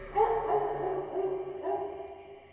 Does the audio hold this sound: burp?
no